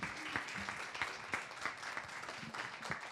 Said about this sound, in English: Give yourselves a nice round of applause.